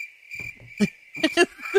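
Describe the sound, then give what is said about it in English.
A crickets sound effect plays: steady, high-pitched cricket chirping runs through the whole moment, a continuous insect drone with a few soft low thumps and taps popping up beneath it. “Oh, I couldn't get the crickets because the fucking volume was down.”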